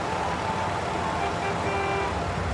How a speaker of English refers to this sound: But the path has become gridlocked by all manner of odd vehicles struggling to merge into the tunnel system.